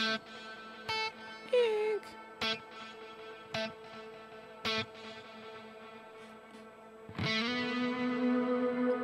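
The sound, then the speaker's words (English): Electric guitar played through a big echo on an AxeFX with an octave-up pitch shifter: sparse plucked notes and chords ring out with shimmering high repeats, then a sustained chord swells and holds near the end. “The big echo I have on the AxeFX there has that pitch shifter in it, which I like. So there's that octave up.”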